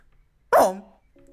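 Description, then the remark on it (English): A single loud bark-like yelp from a person imitating a dog, sharp at the start and trailing off within half a second, with near silence before and after. “I was going to bark. If you want to bark, do it.”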